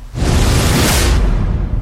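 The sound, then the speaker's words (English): A single loud swoosh effect, a rush of airy noise that swells to a bright peak about midway and then fades, over a steady low rumble, with no one speaking. “Let's have a swoosh.”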